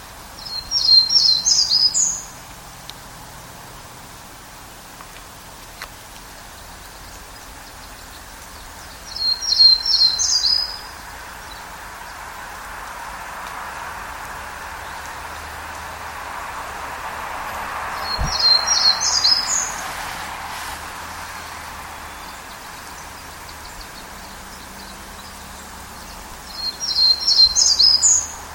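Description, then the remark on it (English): A Townsend's warbler sings four short, high, buzzy phrases, each separated by several seconds of quiet outdoor ambience, with no talking; recorded at Totem Park in Sitka. “So I'll go ahead and play a recording of a Townsend's warbler that I recorded here in Sitka.”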